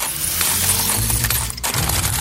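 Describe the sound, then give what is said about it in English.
A loud clatter of many coins spilling and jingling together, a dense metallic rattle that runs nonstop for a couple of seconds with no voices. “How about all these coins?”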